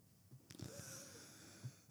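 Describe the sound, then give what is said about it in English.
A few short, rough coughs break out over a wheezy, raspy breath, ending in one sharper, louder cough. The sounds are fairly quiet overall, and nobody speaks. “God damn, when you gonna stop fucking coughing? You've been coughing for like 5 days now.”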